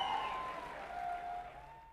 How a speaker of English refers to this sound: As predicted, there was an uproar of applause from the crowd, which came to a sudden halt when the ringmaster shushed them.